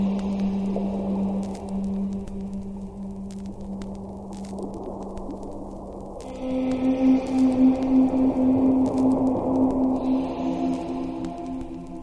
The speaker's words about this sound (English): Shh, whale song. Listen, I'm going to put the whale song louder in the mix for a second.